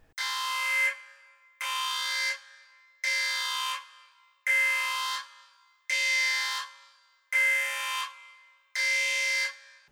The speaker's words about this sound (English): Sound the alarm.